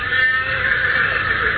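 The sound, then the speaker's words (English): A horse whinnies from some distance, one drawn-out, steady call that fills the moment without pause. No voices accompany it. “It's not one of our horses.”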